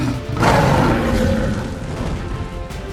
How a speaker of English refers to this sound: As all the fighting Yondrans beheld the pillar of fire and heard the bugle of the dragon, they too bowed down before it.